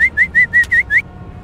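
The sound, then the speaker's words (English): A dog catcher in an alley whistles six short, evenly spaced notes in quick succession, each a bright mid-pitched chirp, clear with no talking. “He whistles.”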